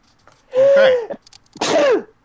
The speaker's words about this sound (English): Okay. Sneezes. Sorry about that.